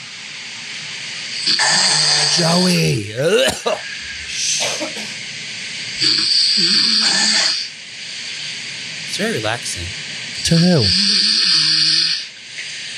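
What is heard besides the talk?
loud snoring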